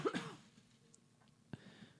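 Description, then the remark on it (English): A single short, sharp, fairly loud cough at the very start, followed by near silence with only a faint brief knock later on. “There's one cough.”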